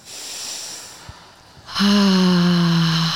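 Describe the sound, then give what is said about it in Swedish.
A soft, drawn-in breath through the nose, followed by a long, loud exhale through the mouth that carries a steady voiced sigh or hum: a deep breath taken as a grounding exercise, breathing in through the nose and out through the mouth to release. “Så vi andas in genom näsan och andas ut genom munnen för att verkligen releasa.”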